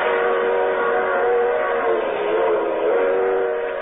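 A train roars through a sleeping village in the dead of night at 60 miles an hour on open track, a steady, loud rumbling rush with a sustained whistle-like tone riding over it throughout. No voices are heard.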